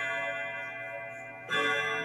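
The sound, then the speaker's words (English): A clock chimes at 10 o'clock with a sustained, ringing metallic tone, then a second, louder strike lands partway through and hangs in the air. No one speaks. “It's 10 o'clock. Are we going to get 10 chimes?”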